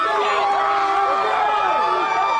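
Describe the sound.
A crowd of about 35,000 drunk college students and Saturday night fans roars continuously, many overlapping voices shouting and cheering at once in a loud, steady wall of sound with rising and falling yells.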